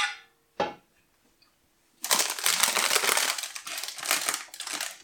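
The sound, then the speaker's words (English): A brief rustle and a sharp tap, a short pause, then about three seconds of loud, continuous crinkling of baking paper as a cooked brownie is lifted out of its tray by the paper's two handles, with no talking. “So with our baking paper, we left it with the two handles, so we can just simply lift it out.”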